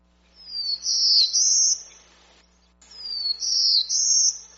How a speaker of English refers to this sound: Let's hear some new calls. This is the Black-Throated Blue Warbler.